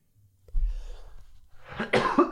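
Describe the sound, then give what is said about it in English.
A few raspy coughs: a muffled, throaty one first, then a louder burst of two or three harsh coughs near the end, with no talking. “You're still coughing.”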